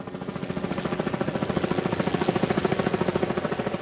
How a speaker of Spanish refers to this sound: En ese momento llegó el helicóptero, esa angustia. Llovía, día gris.